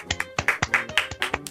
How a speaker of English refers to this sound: It was just me. Oh, I thought you were doing that editing thing. No. It was just clapping.